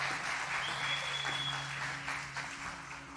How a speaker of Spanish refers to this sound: Vamos a colocarnos de pie, por favor. Un aplauso a mis panelistas, bellas, hermosas.